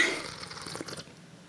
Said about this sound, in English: Slurping too. What a wonderful sound. There's such humanity in the sound of slurping.